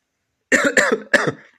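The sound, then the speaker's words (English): Three sharp coughs in quick succession from a person, each a harsh burst with a brief gap between, the last trailing off into a breathy rasp. “I really apologize for that coughing.”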